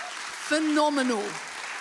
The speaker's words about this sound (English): So before I go any further, I think we need, and if you're online, I want you to get involved in this too, to give us, you included, a huge round of applause.